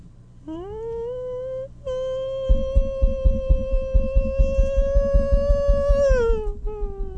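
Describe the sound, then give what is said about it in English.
A voice imitates a woman screaming as she runs from the back of a plane waiting to take off, passing by with a Doppler effect: one long, sustained, steady wail that drops off at the end, over a fast run of rhythmic low thumps starting partway through. “And I realize after the noise passes, it's a woman who started screaming and running from the back of the plane.”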